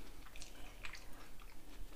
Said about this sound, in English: You're doing a lot of chewing on the mic, pimp. My bad. I was in gaming. My bad. I'll stop. I feel like popcorn is in them grapes.